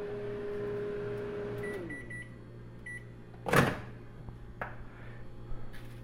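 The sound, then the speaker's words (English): A Frigidaire microwave oven's steady hum winds down and stops as it is turned off, leaving a faint background drone, followed by a sharp clunk of its door opening and a few soft clatters. “I'll go ahead and put that on the stove and let it rest for a bit and turn this microwave off.”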